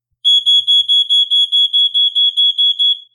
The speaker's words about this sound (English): But before Mama Peters could finish her sentence, she heard the shrill sounds of the smoke detector blaring its warning throughout the house.